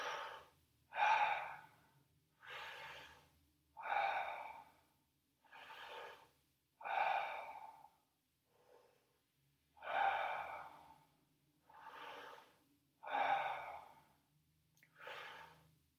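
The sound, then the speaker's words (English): Deep, rhythmic breathing repeats steadily during a breathing exercise done lying down, about ten loud, airy breaths at an even pace with brief pauses between them, clear with no talking. “And breathe 1 more minute up to the first retention.”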